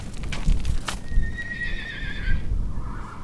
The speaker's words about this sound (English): I'm standing outside a corral at the base of the LaSalle Mountains in southeastern Utah. Around here, you'll find plenty of horses